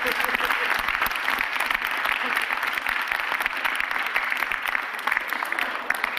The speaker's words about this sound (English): One more round of applause for these guys.